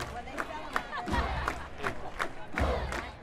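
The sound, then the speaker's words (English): A big crowd at an OU home football game in Athens, against Southeastern Louisiana University during Parents Weekend, cheers and shouts together, with steady rhythmic bursts rising out of the roar, like a chant or claps keeping time. “Cheers during OU's home game were punctuated by quieter voices not often heard in Athens.”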